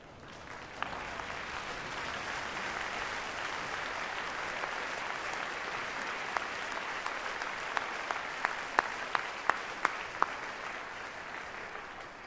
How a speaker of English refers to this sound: And by their presence here, they show how much they care about you, how much they hope for your success, and this would be a great time to say thank you. So, if you're a student, stand up, give your supporters a big round of applause.